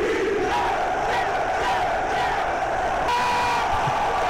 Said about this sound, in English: It's a guy got a kazoo. You don't hear a lot of kazoos anymore.